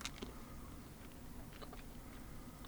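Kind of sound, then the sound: food or drink, chewing a jelly bean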